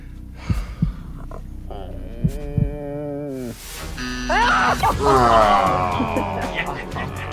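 A suspenseful heartbeat sound effect: deep, muffled double thumps pulsing under sustained, tense tones that swell and grow louder and busier toward the end.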